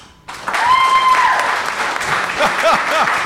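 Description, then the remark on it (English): An audience breaks into steady, loud applause, a dense wash of clapping hands with a few brief whistles and cheers rising above it, signaling belief that President Trump should be impeached by the Democratic House. “Signal by applauding.”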